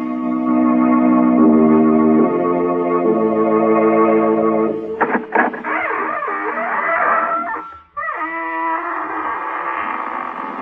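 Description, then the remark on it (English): The famous squeaking door of the old-time radio show Inner Sanctum Mysteries creaks open in one long, loud, drawn-out squeal, its pitch stepping between held tones and then swooping and wavering before a brief break and a final groan. No one speaks. “This is your host, Raymond, welcoming you through the squeaking door.”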